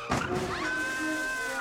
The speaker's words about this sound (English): Crashed her Bel Air off Sunset on her way back from her agent's office where she got the news of the offer. Thrown from the car 30 feet.